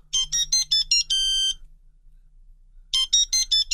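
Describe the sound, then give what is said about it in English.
A bright electronic cell phone ringtone melody, used as an everyday ringtone, plays a quick series of tonal notes, pauses for over a second, then repeats the same melodic phrase, loud with no talking. “But my day-to-day ringtone is this.”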